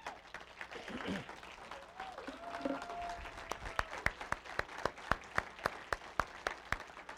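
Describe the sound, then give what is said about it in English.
A church audience stands to applaud the children who had been singing, amid scattered voices, and the loose clapping soon settles into loud, rhythmic clapping in unison with a steady, quick beat. “Come on, let's stand up and give them a round of applause.”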